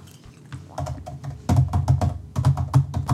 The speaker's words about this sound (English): Oh, that's fake typing, if I've ever heard it before. Mm. That is such fake typing.